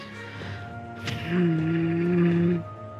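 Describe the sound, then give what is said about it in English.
A domestic cat lets out one drawn-out, steady meow lasting just over a second, clear, following a brief knock or thump. “I have a cat who's trying to absolutely be a menace.”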